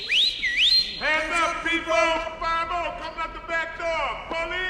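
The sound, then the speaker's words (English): A quick, shrill warning whistle glides up, dips and rises again for about a second, alerting a building that police are coming up the stairs, then a voice takes over with drawn-out, sing-song sounds. “They whistle and alert everyone that there's 5-0 coming up the stairs.”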